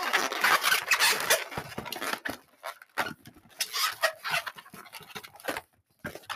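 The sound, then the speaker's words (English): A long balloon squeaks and creaks as it is twisted into a dog shape, with irregular bursts of rubbery squealing and brief pauses. No one speaks. “So it's pretty much a dog balloon.”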